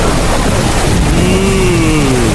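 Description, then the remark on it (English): Steady, dense rain hisses loudly and evenly throughout, with a faint low droning tone rising and falling beneath it. No one speaks. “Let's get to the good stuff. Please. Rain.”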